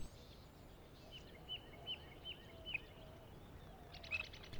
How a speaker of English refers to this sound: I know for me, during the first several months of quarantine, when automobile activity was at its lowest, the birds in my neighborhood gathered more frequently, waking me up every morning with their dawn chorus.